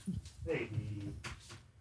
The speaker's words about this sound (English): Yep, that's a hairball, all right.